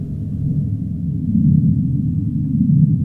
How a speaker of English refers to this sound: Sei whales, that low rumble in the south.